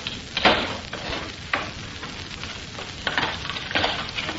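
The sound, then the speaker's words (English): Boards on a wooden box, held by a single nail at each end, being pried open with a hammer: a run of dry creaking and splintering crackles with several sharper bursts amid steady scraping noise, and no voices. “No, I'll open it. There's only a single nail at each end holding the boards.”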